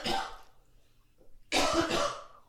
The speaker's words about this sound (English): If you cough one more time. All right, I'm good. I'll hit you.